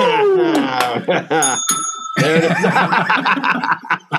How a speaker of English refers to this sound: Ring the bell.